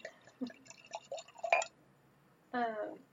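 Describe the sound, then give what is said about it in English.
Trickles and small clinks, then a brief steady pour of wine into a glass, its ringing tone rising as the glass fills, lasting under a second. “Gonna pour myself more of it right now.”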